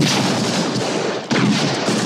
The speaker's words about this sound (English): The actual Indiana Jones gunshot was a .30-30 Winchester rifle that was recorded.